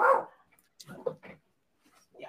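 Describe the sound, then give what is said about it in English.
A single loud dog bark at the start, then quieter muffled talking and scattered bursts of voice afterward. “Not just the dog.”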